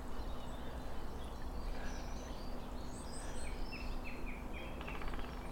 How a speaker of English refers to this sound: Now, a woodpecker somewhere.